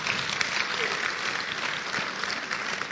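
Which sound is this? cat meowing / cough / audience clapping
audience clapping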